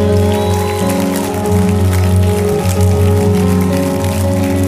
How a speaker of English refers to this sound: Let's clap our hands and celebrate.